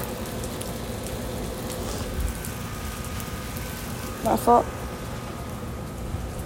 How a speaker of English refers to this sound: I'm really out here in the rain.